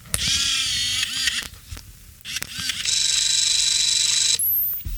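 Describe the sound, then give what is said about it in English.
A Canon SureShot Z155 Caption Edition point-and-shoot film camera whirs with a high, buzzing motor, pauses after a sharp click, then runs again in a longer steady whine that ends with a rising chirp. “That's a little point and shoot I got here. The Canon SureShot Z155 caption, the caption edition.”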